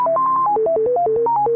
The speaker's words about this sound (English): Just then, Natasha's phone buzzes with an incoming text.